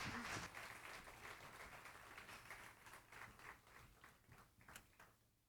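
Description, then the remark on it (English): A crowd applauds the band, the clapping dense and steady at first, then thinning into scattered individual claps as it tapers off toward the end. “Well, give our band a big round of applause, amen.”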